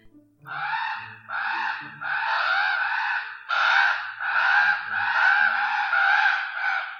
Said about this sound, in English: And this is their fledgling. Does fledgling mean, that has something to do with babies, right? It means that they can't fly yet. Does this mean that this is baby crows making this noise? Here, I'll play it.